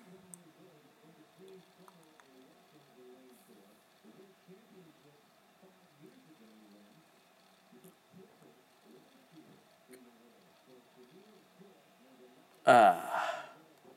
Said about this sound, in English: muffled yawn. That's better. But it hurt. It was worth it though. It was so worth it.